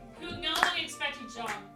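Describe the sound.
A few slow, evenly spaced claps, about three sharp hits roughly half a second apart, mixed in with people talking over them, during a tabletop role-playing game after a zombie is dispatched.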